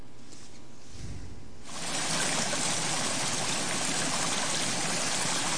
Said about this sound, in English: I think you guys are probably tired of hearing water flowing and rain. I have this great CD of nature sounds, so I pull that up every once in a while.